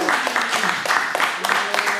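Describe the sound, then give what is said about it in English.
Clapping and applause welcoming a female guest on a show, steady and fairly loud throughout, with voices whooping and talking underneath the claps. “Y'all clap it up for her.”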